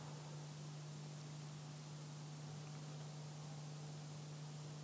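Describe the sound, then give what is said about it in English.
A steady electrical hum from a piece of audio equipment drones without change beneath a wash of faint hiss, low and constant for the whole stretch, with no voices or other sounds. “one of these thing is humming.”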